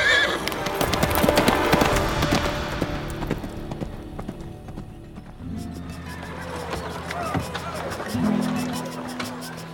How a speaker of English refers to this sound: He spurred his horse, galloping to catch up with the soldiers and his prisoner.